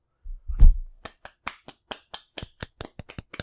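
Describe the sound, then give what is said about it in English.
A low thump, then a quick, steady run of about fourteen light, crisp hand claps, soft and polite like golf claps, with no talking over them. “Golf claps for the episode, everyone.”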